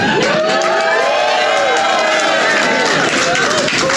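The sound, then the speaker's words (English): A large live audience cheers in a loud, sustained roar, with countless overlapping shouts and rising whoops blending into a dense wall of crowd noise for about four seconds. “It sounds like there's even more people.”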